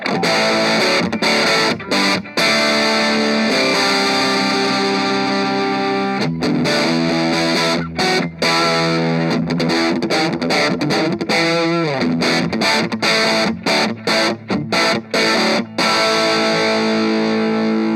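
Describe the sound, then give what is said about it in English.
A distorted electric guitar played through an amplifier's dirty channel, with the channel volume backed off and a control cranked to about 12 o'clock, plays crunchy, sustained chords and riffs with brief rhythmic gaps, loud and saturated throughout, with a pitch bend or warble around the middle. “So we can back the volume off on the dirty channel and then we can crank that up a bit to kind of 12 o'clock.”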